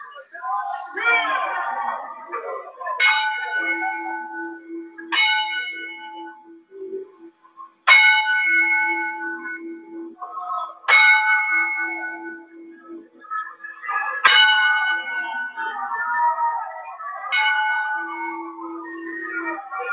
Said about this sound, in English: as we toll the bell 10 times out of respect to the late Brian Pillman